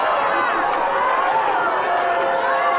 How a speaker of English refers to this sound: I love it. Who's he waving at? Everyone's booing. There's still too many cheers.